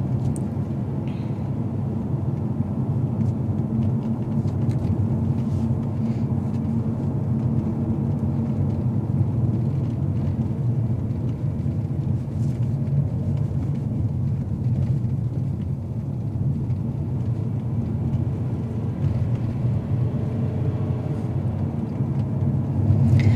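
Steady, low rumble of a car interior while driving, a continuous deep engine and road drone filling the space with faint tire hiss above it, no talking.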